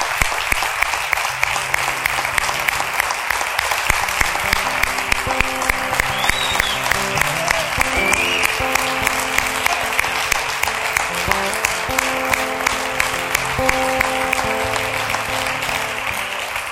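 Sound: audience applauding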